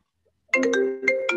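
A mobile phone ringtone for an incoming call starts suddenly after a brief silence, playing a bright, melodic electronic tune of sustained tones and quick note changes, fairly loud.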